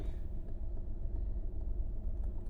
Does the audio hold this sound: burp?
no